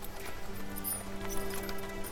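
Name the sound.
horse hooves clip-clopping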